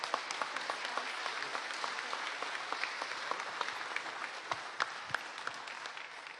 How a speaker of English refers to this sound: All right, so should we give a big round of applause for these two, because they're lovely people.